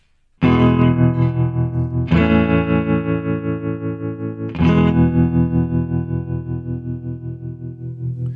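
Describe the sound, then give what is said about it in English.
Three strummed chords on a Stratocaster electric guitar ring out one after another, each sustaining with a pulsing, wavering built-in vibrato and a wash of reverb, loud with no voices. “It's just built-in vibrato and the some reverb, Stratocaster, three chords.”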